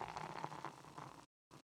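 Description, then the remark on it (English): Beer pours into a glass with a fizzy gurgle and splashing for about a second, then stops abruptly, followed by a brief second splash. “We got to stop interrupting each other with our beer pours.”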